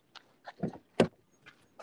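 Someone climbs into a car: a handful of short clicks and shuffling knocks, then one solid, close thump like a car door shutting, followed by a few lighter taps. No talking.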